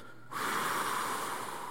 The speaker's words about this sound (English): Just kind of roll your shoulders back, sit up straight in your pew, and I want you to take a deep breath in through your nose, all the way up, and then out through your mouth. Ready?